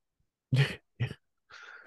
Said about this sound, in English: wait, was that cough like a yeah, of course? Or was that cough like I'm nervous to answer this? I'm nervous to answer this and no, I would not.